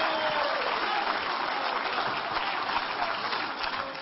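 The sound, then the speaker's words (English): An audience gives the Lord a hand clap, a dense, steady wash of many overlapping claps that holds at an even loudness for the full four seconds. “Give the Lord a hand clap here.”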